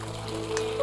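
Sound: audience applause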